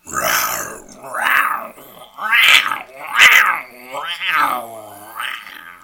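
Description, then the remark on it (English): Someone imitates a lion's roar, like the MGM lion, with about six strained, growly vocal bursts in quick succession, fairly loud, coming out more like a yowling cat than a big roar. “I don't think I've ever done an impression of a lion in my entire life, so that's an exclusive for you and the world.”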